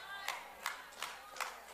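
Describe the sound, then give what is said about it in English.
A handful of scattered claps from an audience, about five isolated hand claps spaced out over a low room murmur, faint and reverberant rather than a full round of applause. “Very few claps because you don't like it.”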